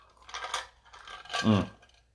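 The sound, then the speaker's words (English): Someone takes a sip of a drink: two soft, airy slurps about a second apart, the second ending in a brief low hum or gulp, then quiet. “Sorry, I'm taking a sip here, and oh, good times.”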